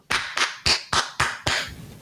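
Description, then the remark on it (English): A brief round of applause from what sounds like a single pair of hands: six sharp, bright claps in a steady, evenly spaced rhythm, with no talking. “Oh, I thought I would give you a round of applause because you knew.”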